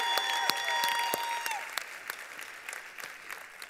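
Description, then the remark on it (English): An audience claps for those who had been cheering, in a steady, dense burst of applause, with sustained high whistling tones over the first second and a half, then the clapping gradually thins and softens. “Come on, let's give those cheering a big hand.”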